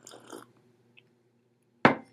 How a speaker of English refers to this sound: Now, back then, take a slurp here real quick.